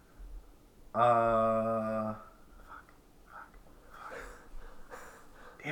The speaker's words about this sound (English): That's big breathing very hard. Thanks for the ambiance.